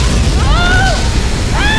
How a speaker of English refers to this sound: The cavern wall of Leviathan City exploded 800 feet above Weller Street. A giant spray of rock and seawater showered down upon the street.